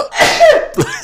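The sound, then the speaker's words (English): A loud sneeze: a sharp breathy burst drawing into a voiced, drawn-out exhale, then a brief second puff of air right after. No one speaks. “Another one?”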